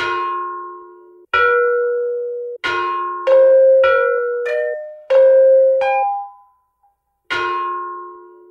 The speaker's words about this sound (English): I found one set of bells that are not these particular bells, but they're the same style of bell that are at the Smithsonian. The last time they played them was in 1991.